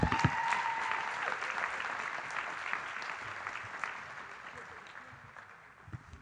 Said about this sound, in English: Can we give him a round of applause as he comes back up?